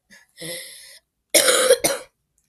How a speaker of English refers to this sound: I'm gonna be fine. If I cough, I cough. Okay, just don't worry. It's okay, I cough.